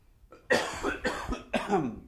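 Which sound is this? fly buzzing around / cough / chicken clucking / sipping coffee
cough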